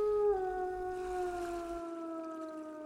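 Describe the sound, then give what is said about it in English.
A single long, drawn-out dog howl with a steady tone that slowly slides downward, clear, with a faint low rumble beneath it for the first part, on a night with a full moon. “Dog. Or a werewolf.”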